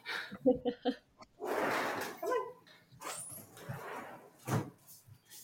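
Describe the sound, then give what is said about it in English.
A sliding door rumbles open with a couple of rushing, scraping bursts and a few clunks as someone lets a dog in, followed by faint shuffling and a possible animal snort. “I gotta let this dog in quick.”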